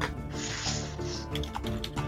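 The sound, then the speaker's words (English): A few quick keyboard clicks tap out in the second half, scattered, over a steady bed of hissy noise and a low droning background. “Ooh, that, where am I typing?”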